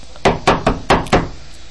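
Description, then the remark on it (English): Five loud knocks on a door in a quick, insistent rhythm, each a hard hollow thud, followed by a brief quiet pause. “I know you're in there. Open the goddamn door”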